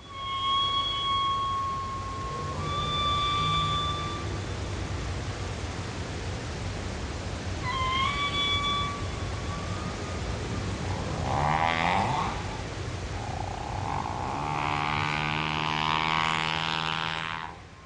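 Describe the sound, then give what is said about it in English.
A humpback whale call over steady underwater hiss: thin tonal whistles, then a rising, roaring harmonic sweep that swells like a jet plane taking off, loud and sustained near the end. “And so this is a call from a humpback whale that we think sounds like a plane taking off.”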